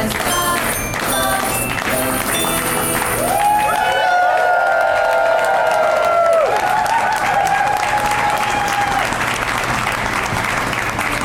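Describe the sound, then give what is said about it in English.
An audience claps along to the Christmas version of a theme song and cheers loudly throughout, with sustained whooping and voices rising over dense, continuous applause that fills the whole stretch. “The Christmas song is so hard to clap along to.”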